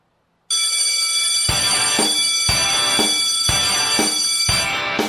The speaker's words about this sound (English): A little bit of a pause there before the bell.